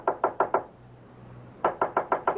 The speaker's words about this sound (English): I can't open the door. It's locked. Well, knock on it. Knock.